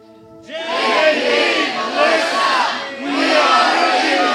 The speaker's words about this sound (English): I want you to do it so loud that those ceiling nails might start falling down. Yell, point at them with your hand, and let's say it.